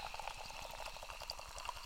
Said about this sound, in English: Just pour myself a little G&T. For all of you ASMR folks. Very close to the microphone.